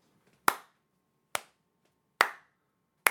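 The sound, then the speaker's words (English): Four sharp, loud hand claps sound alone at a slow, even pace, each a crisp smack with a brief ring that fades before the next. “We can clap a sigh of relief for that.”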